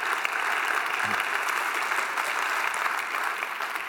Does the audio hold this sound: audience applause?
yes